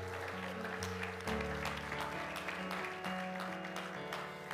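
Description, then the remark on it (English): An audience claps steadily, giving the Lord a hand clap of praise as they are being seated, a dense wash of many hands with sharper individual claps popping out, over a sustained organ-like musical chord that shifts pitch partway through. “Let's give the Lord a hand clap of praise as you're being seated.”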